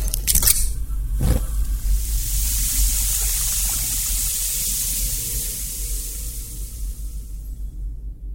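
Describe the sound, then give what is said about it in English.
Eggs fry steadily in a hot pan, a loud crackling hiss with a couple of sharp pops near the start, then an even spitting fry that thins slightly toward the end. “Come on, let's fry.”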